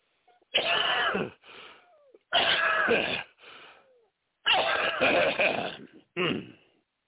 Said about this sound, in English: Sorry. I hit the cough button that time. I'm trying not to cough on you. I got just last little bit of this, whatever it is.